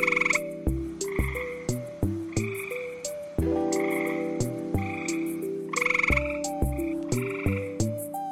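A gray tree frog calls in a loud, steady series of short, buzzy croaks repeating at a regular rhythm, clear, with no voices present.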